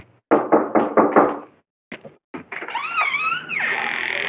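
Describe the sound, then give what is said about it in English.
Five loud, firm knocks on a door by someone delivering a package, in quick succession, a brief pause, then a few more knocks, followed by a sustained high, wavering tone. “Sorry, I just had a package at the door.”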